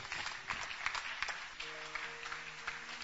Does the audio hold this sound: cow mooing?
no